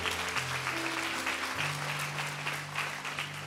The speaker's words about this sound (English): Hey, I want to just encourage you. Yeah, you can clap. That's a good place to clap.